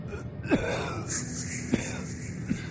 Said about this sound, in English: There was no mistaking it. It was someone breathing. It sounded abnormal, pained, almost like the wheezing coughs during the parade. An odd, low gasp on the inhale and a powdery exhale curtailed by a choked cough.